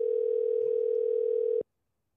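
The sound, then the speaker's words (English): A single steady telephone ringing tone of an outgoing phone call hums loud for about a second and a half, then cuts off abruptly into silence with no answer. “Come on, Terry, pick the phone up.”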